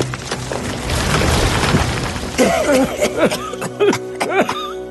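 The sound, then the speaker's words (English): A loud splintering crash as a flaming branch breaks and falls to the ground in a burning forest, with dense crackling noise for a couple of seconds, followed by short warbling, laugh-like vocal sounds. “Then he and the toy maker ran from the forest, just as a flaming branch crashed to the ground.”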